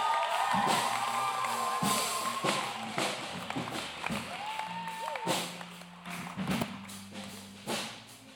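An audience at the Forever Free event breaks into sustained applause to welcome the speaker for session 8, dense clapping lasting several seconds, mixed with scattered cheers and a few whistles, fairly steady before tapering slightly at the end.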